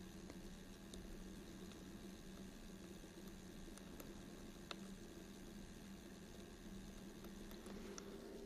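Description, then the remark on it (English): Gentle, continuous trickling water with a faint low hum underneath and occasional soft drips or clicks, steady and quiet throughout with no voices. “A little bit of trickling of water that is so charming.”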